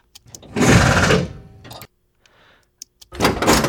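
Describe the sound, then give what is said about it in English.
Two loud bursts of pneumatic hissing and mechanical rattling from compressed-air jacks beside the wheels lifting a car up off the track, separated by a short quiet gap with a faint softer hiss and a couple of sharp clicks. “That's more air jacks, I guess.”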